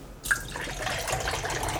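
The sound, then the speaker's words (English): Stout beer pours hard and fast from a can, inverted three times and shaken, into a glass, starting with a sudden splash and continuing as a steady, frothy gush of liquid with no talking. “And then pour fast. Pour hard.”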